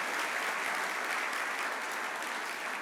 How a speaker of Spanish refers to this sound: Buenos días, feliz Día de las Madres. ¿Por qué no se dan un aplauso? Es un día de festejar.